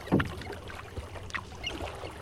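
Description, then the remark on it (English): A kayak paddle dips and pulls through calm water, with a soft splash at the start and gentle swishing and dripping that follow in an uneven rhythm, quiet overall. The kayak is used by a Canadian Wildlife Service wildlife biologist for waterbird surveys. “for her surveys of waterbirds, one of the most important tools of her trade is a kayak.”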